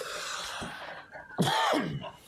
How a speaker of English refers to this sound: Oh my gosh, sorry for all the coughing.